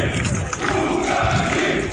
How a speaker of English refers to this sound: Crowds that gathered around the factory gates chanted leave.